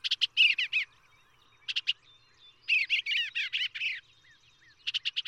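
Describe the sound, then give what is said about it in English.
A bluebird delivers bursts of warbling, chirpy notes in several short phrases separated by brief pauses, clear, with no other sounds around it. “the sap starts up in the sugar maple the very day the bluebird arrives, and the sugar making begins forthwith.”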